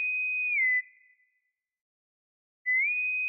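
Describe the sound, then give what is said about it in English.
A bosun's whistle pipes a steady high note that dips lower and fades out, then after a pause of silence the piping returns, sliding back up to the high pitch. “So, ladies and gentlemen, let's blow the bosun's whistle.”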